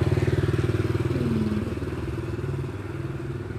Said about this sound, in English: And yeah, here it comes, the motorcycle.